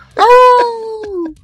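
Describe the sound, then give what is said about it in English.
A person imitates a wolf howl with one long, sustained vocal wail that rises, holds a steady pitch, then slowly slides down and fades, loud and alone with no other talking. “I like that you added the howl in there, and I like the alliteration.”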